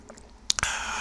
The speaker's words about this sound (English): ASMR. I'm drinking a pink grapefruit seltzer water from Kroger. ASMR.